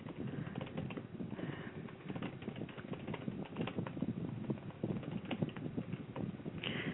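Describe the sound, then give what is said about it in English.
Steady, rapid clicking of keys on a computer keyboard as someone types and sends a message, continuing without pause for several seconds, fairly muffled, with no voices over it. “I'm typing. Let and my computer's going slow.”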